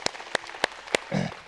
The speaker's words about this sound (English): Y'all stand with me tonight. Let's give God a hand clap in this house. Oh, come on, don't patty cake. Let's give Him a hand clap. He's deserving of it.